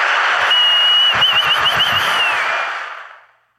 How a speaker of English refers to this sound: And for that, thank you, dude. Thank you. I'm going to give you one more applause just to let you know we care about you.